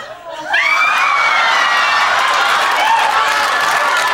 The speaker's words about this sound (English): Yeah, two screams from the audience, the live audience. Screams, literal screams from a studio audience.